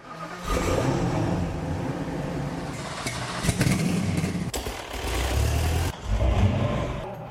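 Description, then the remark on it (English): Loud engines of some of Jay Leno's cars rev and roar, throttles blipping up and down in several bursts with a brief dip before a final surge, no voices. “Those are the mating calls from some of Jay Leno's cars.”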